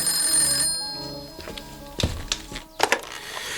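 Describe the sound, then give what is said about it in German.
A telephone in a house rings with a bright, sustained trill that stops after a moment, followed by a few sharp clunks and knocks, like a receiver being picked up. “als das Telefon klingelte.”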